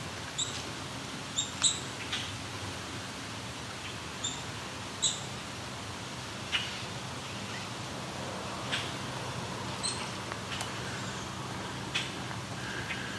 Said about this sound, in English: These check-check calls. Common grackle.